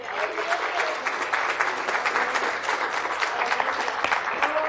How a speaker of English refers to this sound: Is God good? Then give Him a hand clap of praise.